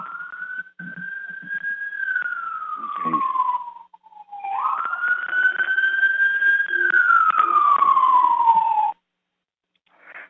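A fire engine siren wails loudly, its tone sliding slowly down, then sweeping up and gliding down again in a long cycle before cutting off abruptly, with no talking.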